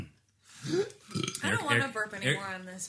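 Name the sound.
burp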